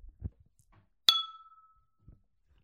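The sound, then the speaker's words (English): A single bright clink of glasses of Milwaukee Brewing's MKE MVP beer touching in a toast, ringing out clearly and fading over a fraction of a second, with a few soft thumps before and after. “So, well, cheers to Milwaukee Brewing and MVP and MKE MVP. Cheers. Cheers.”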